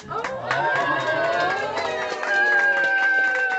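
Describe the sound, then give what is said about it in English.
A large crowd in a lunchroom at lunchtime claps and cheers together after a girl announces she is going to have a baby sister. Rapid applause mixes with excited high-pitched voices and shouts, loud and sustained throughout. “I think with food still in her mouth, says, I'm going to have a baby sister, and everybody claps, and everything was wonderful.”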